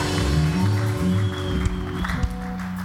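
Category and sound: crowd, audience shouting and clapping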